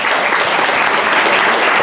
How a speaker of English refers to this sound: I also agree. Round of applause for that one.